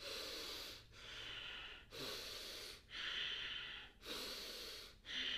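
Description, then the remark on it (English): Strong, fast active circular breathing in a steady cycle, each loud, airy inhale and exhale running straight into the next with only brief dips between, about five breaths, with no talking. “So what to expect today, we're going to be doing some active circular breathing. It's going to look like this.”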